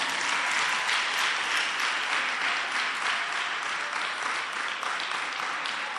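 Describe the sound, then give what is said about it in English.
A crowd claps their hands for Jesus steadily for several seconds, a dense, even wash of many hands applauding at once with no voices standing out. “Then when you are finished, clap your hands for Jesus.”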